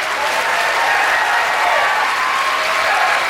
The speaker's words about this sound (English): All right, okay. gets pleasant applause there.